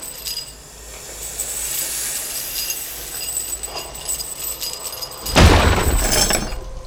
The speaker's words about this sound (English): Her massive serpent tail cracks the very foundation of the dungeon, hammering into very old walls that have stood for centuries.